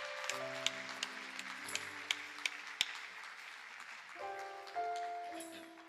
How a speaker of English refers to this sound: If you're grateful that God has rescued your life, come on, won't you give God another hand clap of praise in the house today?